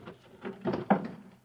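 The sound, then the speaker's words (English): A chair is shoved under a hotel room door: a few short wooden scrapes and bumps build to a sharper knock, then fade. Fairly quiet, with no voices. “Shove a chair under the door now”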